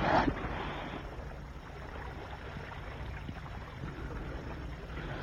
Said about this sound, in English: Hey, it's 11 and I have to pilot this boat back to harbor.